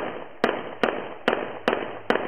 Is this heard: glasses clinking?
no